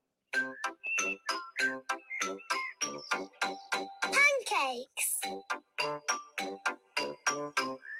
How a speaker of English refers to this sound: Right, Peppa Pig, here we go. It's true. Peppa Pig. It's the theme tune.